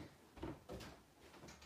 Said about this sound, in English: Hang on. I close this door.